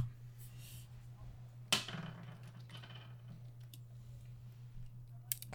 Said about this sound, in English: Oh, shoot. Son of a... Did his cat just, like, come destroy his keyboard again?